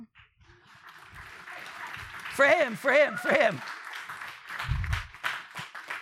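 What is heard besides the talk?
audience clapping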